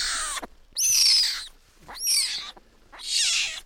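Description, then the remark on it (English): A small male cougar kitten, small enough to fit in two hands, growls while being held, in four harsh, raspy bursts separated by short pauses, the rough, hissing snarls fairly loud with no talking over them. “You can hear him growling.”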